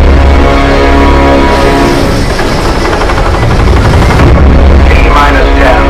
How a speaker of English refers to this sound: We have a go for main engine start.